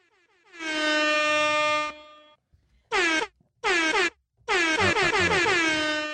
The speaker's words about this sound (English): I should have never put that on her because now she's going to abuse it. I finally put her air horn on there, guys. Yay, I'm so happy.